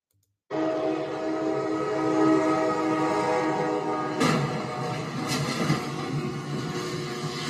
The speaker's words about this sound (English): What I'm playing for you there, folks, is a train barreling through an 18-wheeler in Haverstraw, New York. Yeah, there was this truck that was 18-wheeler, high-centered on a railroad track crossing,